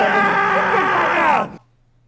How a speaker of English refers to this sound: And it's just, I have this primal scream in my head.